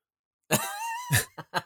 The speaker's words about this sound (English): Wait, why'd you just cough?